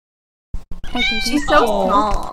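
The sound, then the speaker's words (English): A small cat lets out a long, wavering meow, loud and drawn out over a couple of seconds, preceded by a few brief soft knocks. “I want to squish that cat.”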